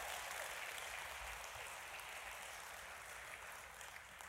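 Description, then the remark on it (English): A church audience at Go Church applauds steadily for several seconds during a sermon, a dense wash of many hands clapping at once that holds an even level throughout, with no voices over it. “Come on now. There we go.”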